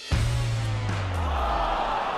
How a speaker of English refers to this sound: Sounded like yesterday with the pumped in crowd music.